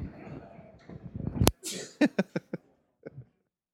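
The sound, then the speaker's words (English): A person talks, then stops for one sudden, loud sneeze with a sharp onset and breathy spray, followed by a few short voiced bursts. “Bless you.”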